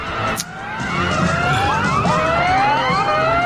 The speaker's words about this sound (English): Evacuation alarm. Everyone, get out of the building.